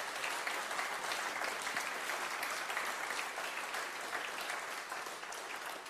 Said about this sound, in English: Rejoice always. Should we just give God an applause right now? Should we just rejoice at his goodness?